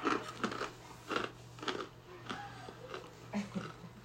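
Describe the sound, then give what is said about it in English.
Crisp bites and chewing on a durian fruit snack, with about eight crunchy snaps in an uneven rhythm over a steady low hum. Nobody speaks. “Durian fruit.”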